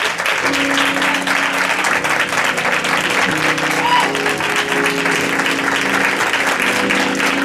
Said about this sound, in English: So let's welcome him with a hand clap